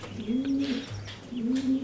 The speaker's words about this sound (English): Pigeons. They're pigeons. Okay. Way Out in the Wing has just purchased a breeding pair of racing pigeons. Are you for real? Yep. Their names are Little Bill and Seagull.